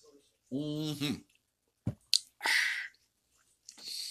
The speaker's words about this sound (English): And before I continue, I'm going to take a sip of my wonderful coffee.